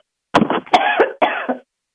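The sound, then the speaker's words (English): A short burst of loud coughing, three or four harsh hacks in quick succession lasting about a second, with no talking. “I am so sorry I had to cough.”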